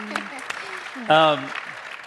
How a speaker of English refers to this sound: Yeah, you can clap.